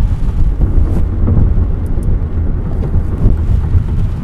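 Steady, loud low rumble of a car driving on a highway in the rain at no more than 70, with trucks following close behind, road and tire roar and faint spattering throughout, no voices.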